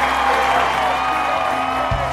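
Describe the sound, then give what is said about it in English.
A large commencement crowd of the Class of 2017 at the University of Southern California applauds and cheers for Will Ferrell in a steady, dense wash of clapping and voices that stays loud and continuous throughout, with no distinct individual speaker standing out. “Will Ferrell dazzling the crowd at the University of Southern California.”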